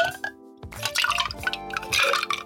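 A cocktail of equal parts vermouth, Campari and gin, stirred with a bar spoon, pours into a glass in a short, splashy stream, with a rising gurgle and faint clinks as the glass fills, fairly clear, no one speaking.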